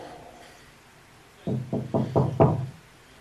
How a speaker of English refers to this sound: Hello? Hello, ma'am? I'm knocking on the wall.